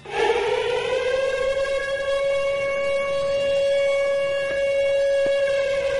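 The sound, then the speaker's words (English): A loud, steady siren sound effect for the Fez Watley versus Eastside Dave Siren Series Challenge on the Ron and Fez Show wails continuously for several seconds, its sustained tone holding nearly flat with rich harmonics and no voices over it. “That is the sound for what, Fez?”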